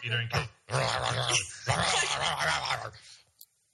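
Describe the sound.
People imitate a dog's growl with their voices, in three rough, drawn-out bursts, fairly loud, with snickering laughter mixed in.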